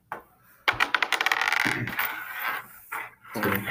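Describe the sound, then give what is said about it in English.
A ten-sided die clatters across a tabletop in a quick burst of bright clicking impacts that settle into a short rattle and stop, fairly loud with no talking, rolled for healing in a tabletop role-playing game. “That wasn't much of a roll.”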